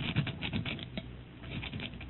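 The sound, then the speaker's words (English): A rock scrapes against the outside of a lead door as something is scratched onto it, in a series of short, gritty rasping strokes with an uneven rhythm, steady and moderately quiet, with no voices. “I want to scratch something on the outside of this lead door.”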